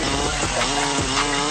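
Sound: chainsaw revving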